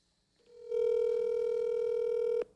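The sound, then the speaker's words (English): A phone dialing a call to the speaker's mother: one steady, unbroken electronic tone at a single mid pitch holds for about two seconds, then cuts off abruptly. No one speaks. “Call her, please.”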